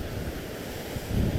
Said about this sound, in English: there is a bit of a breeze, and I don't know whether it's picking up on this